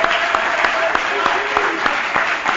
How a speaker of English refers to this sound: But I'd like for you, in a great big celebration hand clap right now, I'd like for you to remember the resurrection of our Lord and feel your Holy Ghost when you do it. Would you do that?